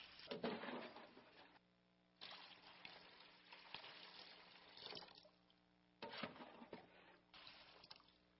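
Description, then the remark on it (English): Water pours and splashes in several separate bursts with short pauses between, as water runs continually and a towel is squeezed and wrung out over a basin, with no voices. “What they heard that night was the continual running of water, the squeezing of the towel, as He continually poured out onto them that which their dirt needed most.”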